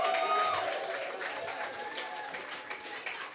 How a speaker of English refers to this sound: Can I get a round of applause